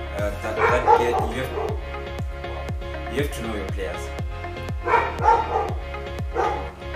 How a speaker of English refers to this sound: Those are my dogs barking. I don't mind them. I love my dogs, by the way.